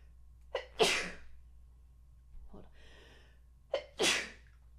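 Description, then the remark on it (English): Two loud sneezes about three seconds apart, each starting with a sharp inhaled gasp before the burst, with a faint breathy sound in between. “Okay, sneezes are always come in twos.”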